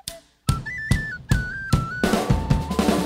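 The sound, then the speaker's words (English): Heavy bass drum hits land in a steady pulse, then quicken into a busier rolling drum fill, while a bright tin whistle melody plays on top, loud. “I love that drum fill.”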